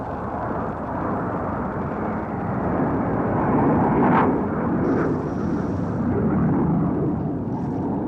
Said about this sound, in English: A jet passing by at 11:10.